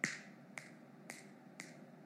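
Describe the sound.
Four sharp finger snaps by a mother at an even, unhurried pace, the first loudest, each a loud, crisp high click with a short ringing tail; no voices.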